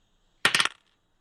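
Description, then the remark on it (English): Dice tumble across a hard tabletop for an investigation check, four or five sharp rattling clicks in rapid succession that fade out within about a third of a second, fairly loud; the roll comes up 9. “Shouldn't have said anything about my dice rolls.”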